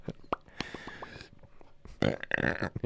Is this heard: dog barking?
no